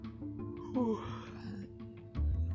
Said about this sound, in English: Who's the, excuse me for yawning in your ears, who's the one celebrity?